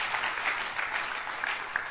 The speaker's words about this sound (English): If you are clapping, you can clap.